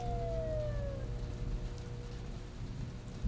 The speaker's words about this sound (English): Just as he was hauling himself up from the thick brown mud, he heard a siren in the distance.